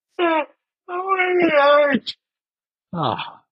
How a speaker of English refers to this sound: Yeah, yawning